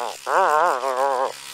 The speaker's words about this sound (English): Oh, sorry, I'm brushing my teeth in my helmet. What? Yeah, there's like a little motorized toothbrush in there. I just smile and then I brush my teeth like that.